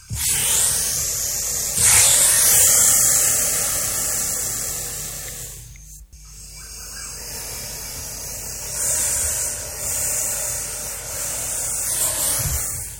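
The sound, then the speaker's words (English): A boa constrictor, a large, heavy-bodied snake, hisses in long, breathy bursts of airy noise that swell and ease off, with a brief pause midway before the hissing resumes. No one speaks. “Boa constrictors are large, heavy-bodied snakes.”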